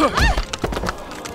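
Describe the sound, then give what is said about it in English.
A horse whinnies sharply, then heavy hooves of horses nearly trampling a woman pound by in a quick, uneven string of loud thuds, with no voices alongside. “Ma'am, there's a horse in the...”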